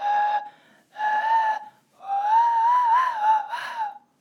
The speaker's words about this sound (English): Speaking of cigarettes, I can whistle with my throat. Don't think it's from cigarettes because I've been able to do it forever, but here we go.